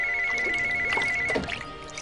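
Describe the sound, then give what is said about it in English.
A cordless telephone rings in a bathroom while a woman is in the bathtub: a steady, high electronic tone for about a second and a half, then stops, over a wash of running water or splashing noise. “She gets a phone call from John.”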